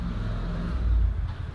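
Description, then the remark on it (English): A motorcycle engine rumbles past, its low drone swelling briefly louder in the middle before easing off. “that cars will drive by, or motorcycles like that one just did”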